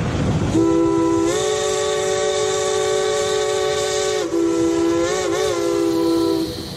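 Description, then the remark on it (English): A loud, sustained train whistle blows over the rumble of a passing train, holding a long steady chord, dipping briefly, then warbling before it cuts off near the end. “There is something about a train going by that has a strong appeal.”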